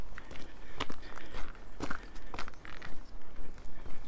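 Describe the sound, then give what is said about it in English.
Steady walking footsteps along the clifftop path of Babbacombe Down, just past the Cliff Railway, crunching at an even pace of roughly two steps per second, with a faint background hiss and no voices. “I'm walking along Babbacombe Down, but I've no idea whether I'm supposed to be up here or down below.”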